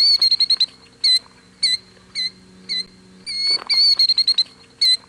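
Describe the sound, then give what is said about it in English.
A killdeer calls in loud, shrill, piercing notes: a rapid stuttering burst, then single cries spaced about half a second apart, another quick flurry and one last cry. No one speaks. “One bird that is impossible to ignore is the killdeer. Its call is loud and easily recognizable.”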